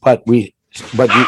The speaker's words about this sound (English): Jeepers, creeper. Your dog's about ready to kill each other.